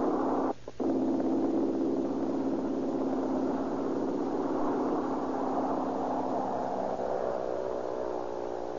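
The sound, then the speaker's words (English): A small red propeller plane's engine drones steadily and loudly, its buzzing pitch climbing slightly as it powers up for takeoff across a grassy airfield in Southern California, with a brief sputter near the start. “Little mechanical red bird skims across the green of the air drone, sees the top of the grass, and vaults toward the heavens.”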